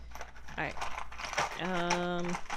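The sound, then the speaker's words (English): Small plastic Crazy Bones figurines clatter and rattle as someone takes them out of a dice box, a busy jumble of light clicks, with a brief voiced murmur toward the end. “I'm getting all these dumb crazy bones out of my dike box.”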